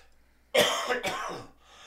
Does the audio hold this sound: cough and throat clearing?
yes